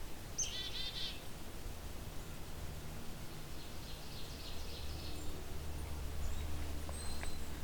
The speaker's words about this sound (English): These are the calls of the black-capped chickadee.